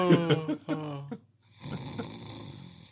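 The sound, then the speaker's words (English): A voice imitates loud snoring: a few drawn-out, harmonic snorts, then a short pause and a rougher, breathy rasping snore that trails on to the end. “Gonna start snoring, going to bed.”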